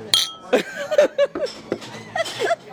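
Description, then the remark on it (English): A bright clink of glasses in a toast rings out near the start, followed by a couple of people laughing and chuckling. “Hey, let's clink our glasses to that one.”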